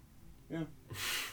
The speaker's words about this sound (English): He yawned.